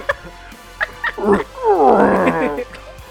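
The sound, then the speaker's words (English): A person growls out a loud, rough imitation of a bear's roar as the bear closes in during a game, starting with a few short grunts and swelling into one long, wavering bellow that trails off. “Yeah, as the bear gets closer, a golf ball hits him in the side of the face.”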